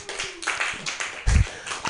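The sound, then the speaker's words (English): A brief burst of audience applause, dense scattered claps filling the whole moment at moderate volume, with a low thump partway through and faint crowd murmur underneath. “Who's ever spanked as a kid growing up? Round of applause.”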